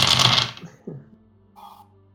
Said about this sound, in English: Time for some of that sweet dice ASMR.